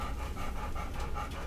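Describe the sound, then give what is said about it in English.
An excited dog pants rapidly and steadily right by the microphone, a loud, rhythmic run of breathy huffs with no one talking. “Yeah, I don't know what that dog's so excited about, like looking up on the bed.”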